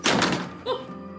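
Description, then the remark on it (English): A heavy front door slams shut with a loud thud, followed by a brief rattling reverberation that fades out quickly. “The front door slams closed.”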